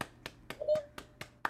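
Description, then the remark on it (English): Light, sparse applause from panelists: about seven evenly spaced hand claps in a steady rhythm, fairly quiet, with a faint brief tone in the middle and no talking. “We're getting a little applause there.”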